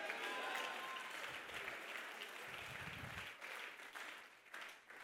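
A church audience claps their hands together in a dense, sustained burst of applause for several seconds, with a few voices faintly audible beneath the clapping.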